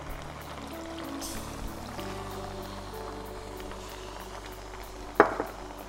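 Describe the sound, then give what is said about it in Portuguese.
Coconut milk pours into a hot pan holding the other ingredients, over a steady sizzle and bubbling hiss, with a sharp metallic clink near the end. No one speaks. “Agora que todos os ingredientes já estão na panela, adicione o leite de coco.”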